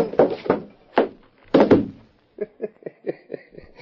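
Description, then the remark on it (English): Several heavy punch impacts land in quick succession, one striking a man square on the chin, each a dull meaty thud, followed by a run of lighter, rapid knocks like scuffling feet. “Did you see me nail him on the chin? Sure, clipped him square.”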